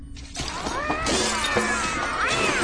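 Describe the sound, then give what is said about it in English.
Several smuggled cats on a ship's promenade deck yowl and meow over one another in a loud, continuous chorus of rising and falling wails, with some clattering noise behind them and no talking. “It seems that someone was smuggling cats, sir.”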